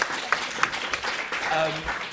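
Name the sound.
audience applause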